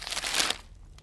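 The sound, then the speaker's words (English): Crisp rustling and crinkling of a piece of paper being picked up and handed to someone, a brief burst of dry crackles that fades after about half a second. “Grayson picks up a piece of paper and hands it to Radon.”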